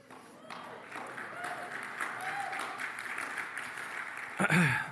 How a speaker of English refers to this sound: Great clapping as always.